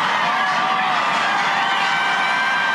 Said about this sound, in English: Loudest the crowd's been all day.